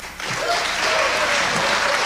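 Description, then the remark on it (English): An audience breaks into sustained applause during a speech to the General Assembly, a dense, steady wash of clapping that holds at full strength throughout, with a few faint cheers rising within it. “All of us should applaud that, right? Shouldn't we all applaud that?”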